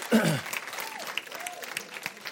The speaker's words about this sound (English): All right, y'all stand up. Let me pray for you. Would y'all give the Lord a hand clap as you stand?